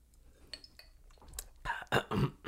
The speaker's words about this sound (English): Take another sip of my alcoholic beverage, and then the scene will begin. Everyone, hold on. Hold for alcohol.